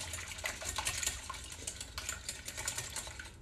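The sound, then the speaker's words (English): Quick, steady clinking and swishing as a whisk beats eggs in a bowl by hand to work air into them, a continuous rapid metallic rattle, with no one talking. “Just keep going back and forth. Start to get them a little light in color as everything starts to get incorporated.”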